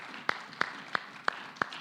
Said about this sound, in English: Let's give the Lord another mighty hand clap.